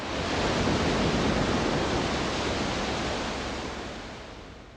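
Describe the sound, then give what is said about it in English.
Steady, full-bodied roar of ocean surf washing onto a shore, from a recorded seashore track, swelling slightly early on and then gently easing off, with no voices present. “One critic wrote, "Waves come splashing out of the speakers."”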